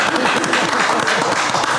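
A loud, continuous round of applause from an audience, many hands clapping in a dense, steady wash of noise with no single claps standing out.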